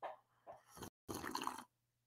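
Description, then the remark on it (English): A deliberately loud, drawn-out slurp of hot coffee early in the morning, a short wet intake, a brief pause, then a longer noisy sip with bubbly liquid sounds, and no talking. “And if you wonder why slurp extra loud, is to make sure that the podcast audience can actually hear the joy of my coffee this early in the morning.”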